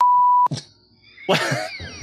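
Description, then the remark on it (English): A joke timer gives one steady, pure electronic beep lasting about half a second, cut off abruptly by a short burst of noise. After a brief lull, a louder, rough noisy sound follows. “The joke timer ran out.”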